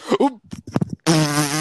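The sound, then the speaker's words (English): A short voice-like sound gives way to a few sputtering bursts, then a loud, sustained, buzzy fart noise that runs to the end, prominent. “All right, now I played it after that fart.”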